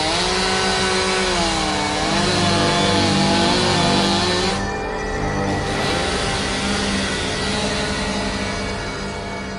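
A loud chainsaw roars steadily for about ten seconds while cutting people apart, its engine pitch wavering and bogging down briefly midway before revving back up. No voices are heard.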